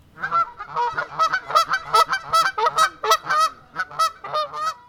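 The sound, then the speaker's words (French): A flock of wild geese honks loudly, many nasal calls overlapping in a busy, uneven stream that never pauses, with no voices present. “Un couple d'oies sauvages traversa d'un pas gauche la pelouse parsemée de marguerites, déroulant de délicates taches blanches.”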